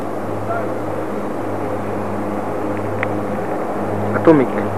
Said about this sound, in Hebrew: כמה מטוסים אנחנו רואים? מה? שלושה? שלושה מטוסים, אבל אחד מתרומם, אתה לא רואה?